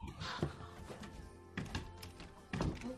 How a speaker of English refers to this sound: Oh, my God. I just dropped my keys. I dropped my keys.